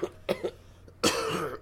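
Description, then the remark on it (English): A person coughs: two short, quick coughs, then a pause and a louder, longer, raspy cough. No one speaks. “I really did have to cough.”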